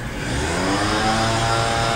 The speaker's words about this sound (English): The leaf blower man from episode, whatever that episode was back screaming. I mean, he never really left.